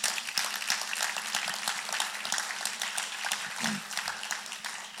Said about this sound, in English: Amen. You can clap.